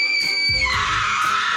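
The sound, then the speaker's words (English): A loud, shrill scream rings out, high and sustained, then drops into a harsher, rougher cry over a low rumble, like a scene from a horror film. “The closer we are to Halloween, the more likely we are to binge watch our favorite slasher movies and occupy the entire living room with junk food, popcorn, and chilling screams throughout the house.”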